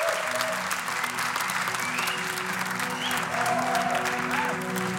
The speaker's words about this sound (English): All right. Thanks for coming, everybody. A big round of applause for ….